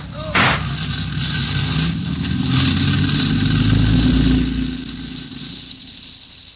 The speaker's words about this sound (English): Wait a minute. There's a car in the alley there.